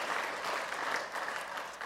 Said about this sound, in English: That is what this church has done. Can you all give yourself another round of applause for that?